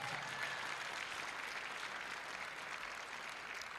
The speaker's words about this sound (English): Are you clapping?